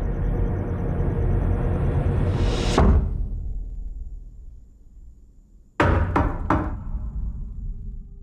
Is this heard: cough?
no